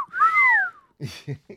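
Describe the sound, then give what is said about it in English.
A person imitates a stereotypical construction worker's loud wolf whistle, one long note sliding up and then falling away, followed by a few short, clipped vocal sounds. “What if it sounded like stereotypical construction workers whistling at hot chicks?”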